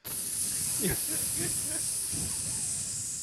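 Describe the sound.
A voice imitates air hissing out of a tube when a pin is pulled: a loud, steady, unbroken hiss lasting about three seconds, with faint low vocal murmurs underneath.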